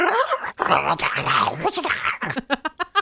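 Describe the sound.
A person voices a dragon's growling and snarling, a rough, strained rumble that breaks into a run of short, rhythmic hissing and rasping bursts near the end.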